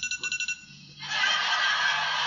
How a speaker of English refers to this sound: Luckily, I set an alarm on my phone for midnight so that I wouldn't be looking at you on our wedding day.